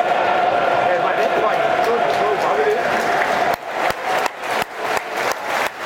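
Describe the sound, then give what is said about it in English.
A big crowd at the Den, Millwall's stadium, rises to applaud Phil Walker as his image appears on the big screen, bursting into loud, continuous applause with a roar of voices, then the clapping thins into a handful of sharp, separate bursts toward the end. “the den rising as one to applaud”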